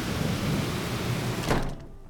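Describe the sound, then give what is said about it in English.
Heavy rain and low rumbling thunder roar steadily outside, then a sliding balcony door shuts with a single thud, and the storm drops to a muffled hush behind it. “Whoa, getting bad out there. Here, let me close the balcony door back up.”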